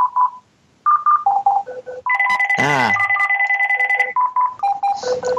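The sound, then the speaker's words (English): A phone's electronic ringtone plays, a loud melodic pattern of short beeping notes and sustained tones repeating throughout, with a brief vocal exclamation cutting in midway. “My freaking phone's ringing.”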